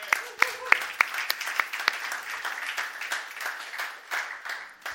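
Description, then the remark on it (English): A crowd applauds in thanks for a run that was held, with dense, overlapping claps, a few sharper hand slaps standing out early, the clapping steady and fairly loud throughout with a faint murmur of voices underneath. “All y'all clapping like you were there.”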